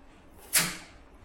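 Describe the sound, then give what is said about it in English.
A single sharp, crisp thwack as an arrow strikes its target and splits another arrow, followed by a short fading rattle, alone against a quiet background. “Oh, sure, you split the first arrow.”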